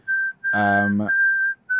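A steady, high-pitched whistle is blown in long sustained blasts separated by brief gaps, with a loud buzzy, reedy honk briefly overlapping it in the middle. Close and clear, no talking.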